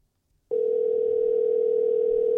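After a brief moment of silence, a telephone dial tone starts abruptly and holds as one steady, unbroken hum, loud, with no voices, as a call is placed to a guest.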